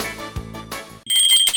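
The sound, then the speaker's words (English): A brief sustained musical tone gives way to a loud, bright bell ringing with a shimmering metallic tone, alone with no voices, rung to open the radio segment The Odd and the Offbeat. “Here's the bell for the Odd and the Offbeat.”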